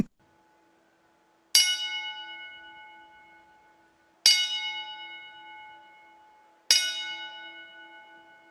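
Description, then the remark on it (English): A ten-bell salute in professional wrestling for Stan Frazier after a loser-leaves-town match: a bell tolls in a slow, solemn salute, three clear metallic strikes spaced a few seconds apart, each ringing out and fading before the next, with no voices around it. “Can we have a moment of silence, please? Here comes the 10 bell salute.”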